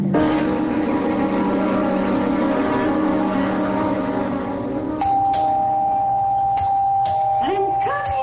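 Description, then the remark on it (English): A steady engine-like drone fills the first few seconds, then a doorbell rings insistently, sounding in long, repeated bursts with short gaps, loud, with a voice briefly at the end. “Don't have to rip the bell off the door, young man.”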